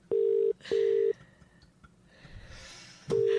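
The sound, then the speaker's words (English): A phone call rings out unanswered: a steady electronic ringback tone sounds in short, loud bursts, three beeps with brief pauses and a longer gap of quiet hiss before the last. “You're a scumbag for not answering.”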